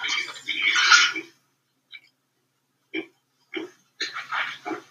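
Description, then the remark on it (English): A pig grunts and oinks in a loud, drawn-out squeal, then a few short snorting grunts follow in an irregular series, with no voices. “It's a pig.”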